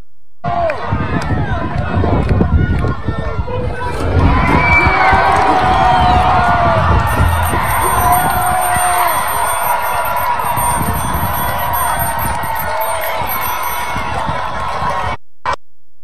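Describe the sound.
A large crowd cheers and shouts continuously as it tears down a statue of Union general Ulysses S. Grant, a loud, dense roar of overlapping voices with occasional whoops and yells rising above it, cutting off abruptly near the end.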